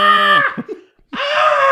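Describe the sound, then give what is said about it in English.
A person's voice imitates a screaming goat: two loud, strained, nasal bleats, the first trailing off into choppy sputters, then a brief silence before the second cry. “Oh, I was doing a goat. Who were you doing? Like a screaming goat.”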